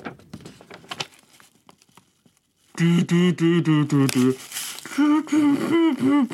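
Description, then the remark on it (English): Soft, scattered crinkling of paper rustles for a couple of seconds, then a loud voice breaks in, vocalising a bouncy, rhythmic melody in short pulses, recreating a piece of music. “I'm recreating the music. You didn't need a piece of paper to do that”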